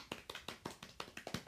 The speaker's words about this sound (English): Thank you. Let's give him a clap.